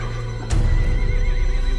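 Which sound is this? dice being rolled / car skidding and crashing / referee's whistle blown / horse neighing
horse neighing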